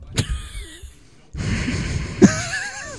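Heavy, agitated breathing blasted into a microphone: a sharp puff, a brief pause, then a long rough, hissing exhale that flares into a harsh burst near the end. No one speaks.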